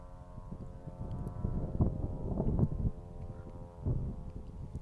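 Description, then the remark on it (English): An airplane drones overhead, a steady low engine rumble layered with sustained humming tones, swelling slightly in a few gusty surges and fading back, with no talking. “Noisy airplane up there somewhere.”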